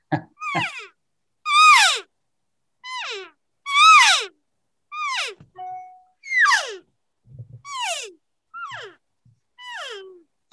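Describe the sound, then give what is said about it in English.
A newly unboxed hunting game call is blown in a series of about ten loud, raspy blasts, each a harmonic-rich wail that slides steeply downward in pitch, with short pauses between and no talking. “I like the sound. Now, I will say, like anything, any new call, you're going to want to play with it.”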